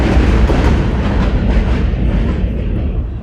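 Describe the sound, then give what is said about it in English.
A loud train rumbles past, a dense roar with rhythmic clattering that gradually thins and fades as it moves away; no one speaks. “I'm gonna wait for the train to pass by here.”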